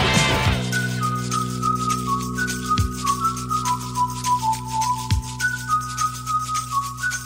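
Someone whistles a stepping, tuneful melody with clear sustained notes, set over a steady musical backing of low held tones and occasional soft percussive hits. No one speaks.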